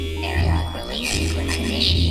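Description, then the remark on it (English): An airlock alarm buzzes: a loud, steady, low-pitched drone that holds without a break for about two seconds, with a hissy, textured layer over the top. “The airlock alarm?”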